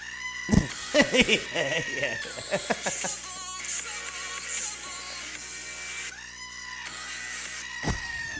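A goat screams in loud, harsh, human-like cries: a quick run of short bursts, then a long drawn-out wail that rises and falls, and a final shorter yell.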